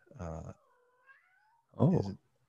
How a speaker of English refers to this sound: Cat. Oh. Did you hear Cat? I did hear a cat. That's Joey. He's having a good time.